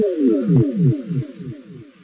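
A sci-fi teleport beam effect, played as MeatCanyon is beamed into the show: a rapid series of about eight warbling tones, each sweeping downward in pitch, repeating in a steady rhythm for two seconds with no voices.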